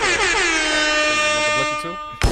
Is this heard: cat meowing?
no